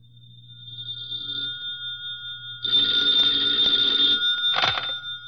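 An old-fashioned telephone bell rings in a loud, rattling burst against a steady low hum, briefly clattering before cutting off, with no voices present.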